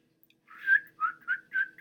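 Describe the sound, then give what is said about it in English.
A person whistles a short melodic phrase, a held rising note followed by four quick chirping notes, clear with no talking, imitating the arrow-control whistle of a character from Guardians of the Galaxy. “The guy from The Walking Dead, he's like whistling and the red...”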